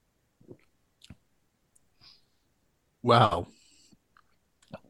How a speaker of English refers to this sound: And this is my first time trying this beer, and I haven't even sipped into it yet, so I'm just going to do that now.